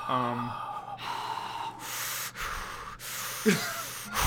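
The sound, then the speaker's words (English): A series of deliberate, heavy breaths as breathing practice: long noisy inhales and exhales, with a sharp gasp near the end, spaced in a slow, steady rhythm. “I'm just going to practice my breathing like I'm giving birth to a failure, baby.”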